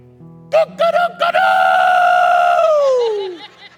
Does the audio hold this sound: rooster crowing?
yes